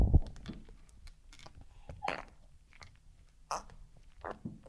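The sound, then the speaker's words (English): Wet sandals squelch and squeak in an irregular series of short, fart-like bursts, some with a brief tonal squeal, at moderate loudness with no talking. “I drowned my penis and now my feet are farting.”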